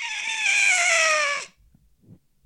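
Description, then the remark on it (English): A person imitates with their voice a loud screech from the sky, a single sustained, bright, harmonic shriek lasting about a second and a half that slides slightly downward before cutting off, followed by faint low rustles. “When you go to take the dog into the house, you hear a loud screech from the sky that sounds like.”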